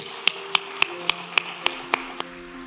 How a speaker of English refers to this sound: Let's applaud this day, okay?